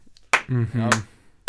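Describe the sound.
Three sharp hand claps spaced roughly half a second apart, with a wordless voiced vocal sound droning between the first two.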